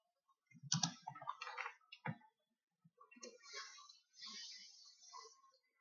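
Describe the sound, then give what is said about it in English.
Quiet typing on a computer keyboard as someone types the words "do not vote Donald Trump ever", irregular bursts of soft key clicks with short pauses between them, with some faint breathy sounds. “I'm just typing something. I'm typing, do not vote Donald Trump ever.”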